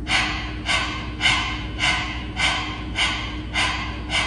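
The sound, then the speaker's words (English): Quick, rhythmic panting breaths of a Kapalabhati breathing exercise, about eight short airy puffs in just over four seconds, clear with an even pace and no talking. “So let's just practice that panting again.”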